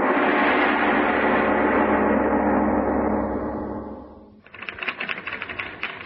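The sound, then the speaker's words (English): A loud, dense wash of sound fades out, then a typewriter clatters in with rapid, uneven keystrokes, fairly loud, for the last couple of seconds. “Sitting at a typewriter 8 hours a day”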